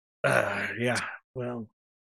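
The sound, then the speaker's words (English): A long, drawn-out yawn with a breathy, groaning voice, followed by a shorter voiced trailing sigh after a brief pause, fairly loud. “…, are you ready? I'm ready. While you yawn?”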